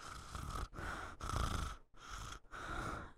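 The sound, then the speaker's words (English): Someone mimics snoring with a run of four or five rough, breathy snorts in a steady rhythm, fairly loud, with short pauses between them and no talking. “The snore. Yep. Is that what that was?”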